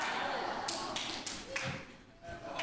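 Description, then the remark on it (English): A few sharp, isolated hand claps ring out one after another over a steady murmur, each a quick bright smack with no rhythm to them, during a church service. “I got one hand clap over there.”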